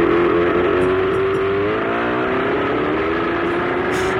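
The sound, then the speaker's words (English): A car engine is started and runs loud, its steady drone climbing in pitch as it revs up, with no voices over it. “Let me go start my car.”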